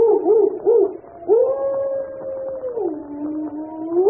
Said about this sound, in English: Listen, my dog. He's in an ugly temper.